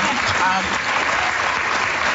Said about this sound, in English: Let's clap that.